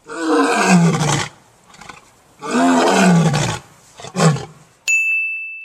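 A lion roars in two long, deep, loud bellows separated by shorter grunting bursts, and the sequence ends with a bright, ringing ding.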